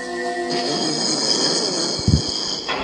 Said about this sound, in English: I think it's just a guy. It's just a guy who snores in his sleep really badly. Oh, it's so fucking weird. That's very funny.